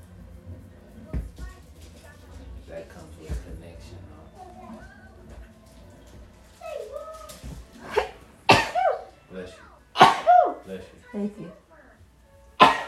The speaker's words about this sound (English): Bless you. Thank you. Bless you. Thank you. I was sneezing. You don't got to try to mock me.